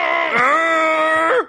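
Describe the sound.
A voice imitates a loud, strained toilet grunt: one long, tense groan that rises in pitch, holds steady for over a second, then drops and cuts off abruptly.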